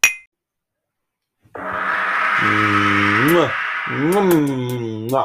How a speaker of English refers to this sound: No, I was sort of adding a little added extra bit on the gong this week because it is Valentine's Day a few days after this podcast goes out.